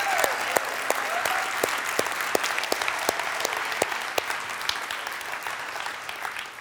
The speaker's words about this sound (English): Now we can clap for those people that do that.